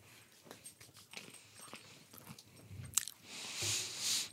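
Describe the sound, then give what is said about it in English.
Crisp crunching as a snack is chewed, a quick irregular series of sharp bites, ending in a louder, hissy rustling burst. No one speaks. “I just like crunchy sounds in general.”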